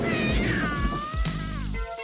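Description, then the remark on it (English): A cat, Squall, lets out a loud, drawn-out yowl that bends and slides in pitch, followed by a second, shorter wail, with no talking, after a trooper driving a ship gets it wet. “I did like the scene where they're on the ship and the trooper is driving the ship, gets the cat wet...”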